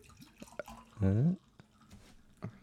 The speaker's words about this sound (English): Should I just pour this one out? Can you just pour it on the floor?